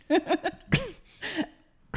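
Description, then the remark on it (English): A woman's sneeze: a few quick, breathy bursts, then a sharp, noisy sneeze with a voiced falling tail, followed by another shorter burst and the start of one more. Fairly loud, no speech. “Everyone, this is her sneeze.”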